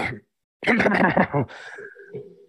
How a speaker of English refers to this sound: I made myself cough.